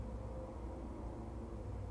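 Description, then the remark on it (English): Steady, low rumble of cars driving by outdoors, a continuous traffic drone with no distinct pass-by and no voices. “These cars are horrible.”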